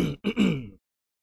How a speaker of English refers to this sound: Let me clear my throat.